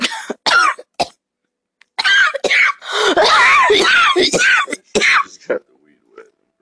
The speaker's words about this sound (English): Nope. I coughed a little bit accidentally, sorry.